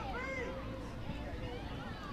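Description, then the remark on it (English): A dense, steady crowd murmur of soccer fans at Southfield stadium during a match, with overlapping voices and occasional rising calls as the referee moves the spot of a free kick, blending into a continuous background hubbub of a large gathering. “You can hear the crowd here at Southfield.”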